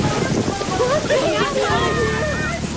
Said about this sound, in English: Oh, come on! I knew it was gonna rain! See? I even brought my umbrella!